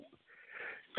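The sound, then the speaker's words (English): A quick, breathy intake of air builds up, then a single sharp, loud sneeze bursts out right at the end, cut off abruptly. “Bless you.”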